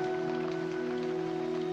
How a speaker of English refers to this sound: The rain.